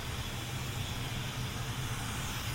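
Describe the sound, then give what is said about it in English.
A robot vacuum runs at high power, giving a steady, loud whirring roar with a low motor hum beneath broad hissing airflow, unbroken throughout and with no one talking. “It looks like the vacuum has a certain spot, but it sounds like high-powered.”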